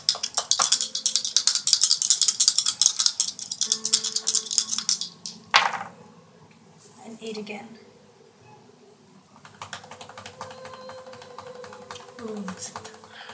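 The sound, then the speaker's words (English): Dice rattle steadily in a hand or cup for several seconds, then land with a sharp clatter, rolled for a defense roll in a game. A softer, lighter rattling follows later, with faint voices murmuring underneath. “So roll me a defense. That's combat modifier.”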